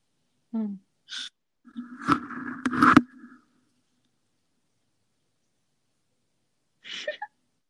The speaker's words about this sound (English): My cat is snoring.